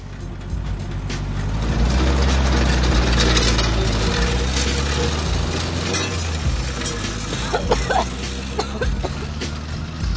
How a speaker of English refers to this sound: The exhaust is rattling so loudly it annoys a woman, who draws Philip's attention to the problem on the way to the garage.